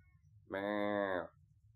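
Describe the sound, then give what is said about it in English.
A cat named Vlad, which had jumped onto a table, lets out a single drawn-out meow, fairly loud, lasting under a second against a quiet low background hum. “Guest appearance from Vlad the cat, dude.”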